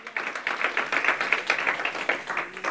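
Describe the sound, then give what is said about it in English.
A crowd claps together in a steady, dense patter of many hands, moderately loud and continuous throughout, with no voices rising above the applause. “Come on, one class, we all clap.”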